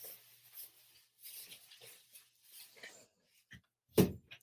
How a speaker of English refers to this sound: Closed door. Sorry.